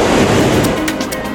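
Loud, continuous rushing roar of ocean waves breaking on a beach of gently undulating deep white sand by a blue sea, with no voices, the wash swelling and easing slightly over its brief length.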